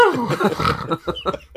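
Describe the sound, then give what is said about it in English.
A voice mimics a character's whistling snore, as if sleeping with a reed whistle in the mouth: a wavering, falling nasal tone, then four short breathy snorts, each topped with a thin, high whistle, in a quick uneven rhythm. “he sleeps with like a reed whistle in his mouth.”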